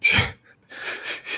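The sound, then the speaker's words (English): A single sharp sneeze bursts out loudly, followed by a few breathy, hissing exhales or sniffles trailing off. No one speaks. “Bless you.”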